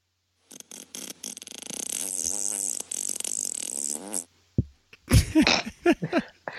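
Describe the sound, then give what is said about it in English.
A long, loud, buzzy comedic fart sound effect, a downloaded effect played as a transition, sputters and wobbles in pitch for several seconds, then cuts off before people start talking. “it was the sound effect Silly Farts”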